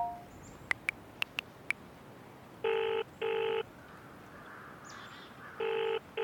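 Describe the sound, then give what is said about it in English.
Loki dials Idun on a mobile phone: a handful of quick, sharp keypad taps, followed by an electronic ringing tone in steady paired bursts with a pause between them, clear with no voices. “That's not magic, it's a mobile phone.”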